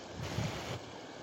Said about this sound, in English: take the rest of this time to listen to this water. And just like running water, bring life.